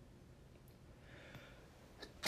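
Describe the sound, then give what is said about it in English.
A faint, breathy intake of air is followed by a sudden loud, explosive sneeze that bursts in at the very end, with no talking. “Bless you.”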